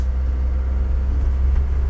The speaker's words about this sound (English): It's 8:30 in the morning. In my truck, driving to my next stop. That's going to take me about 30 minutes.